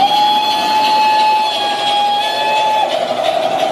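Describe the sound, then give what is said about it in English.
A steam train whistle blows one long, steady, shrill note for nearly three seconds, then cuts off, with a loud rushing, hissing rumble of the train running underneath throughout. “And so they spent the rest of Sunday afternoon playing vintage trains and forgot about all their annoying relatives.”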